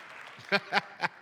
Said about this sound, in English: If you're old enough to know what that is, clap real quick, it'd be five of you.